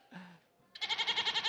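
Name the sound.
goat bleating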